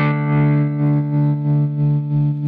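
A sustained guitar chord pulses with a smooth, regular tremolo effect set to a sine wave with the mix all the way up, swelling and dipping in volume about five times in a steady wave-like rhythm, played loud and alone with no talking.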